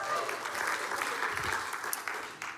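A church service audience applauds steadily, a dense wash of many hands clapping at once with no clear rhythm, sustained and fairly loud throughout the short stretch, with a faint voice or two underneath.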